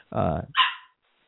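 A dog lets out one short, loud bark in a studio, a throaty woof trailing into a breathy huff, then silence.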